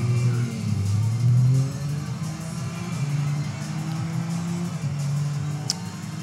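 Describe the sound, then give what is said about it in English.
A video game car engine, a yellow Jaguar convertible resembling an E-Type in the Epic Stunt Sprint, drones steadily, its pitch rising and dipping as it revs up and eases off, filling the whole stretch without any talking. “Ooh, I like that yellow car right there. It's like a convertible E-Type on steroids.”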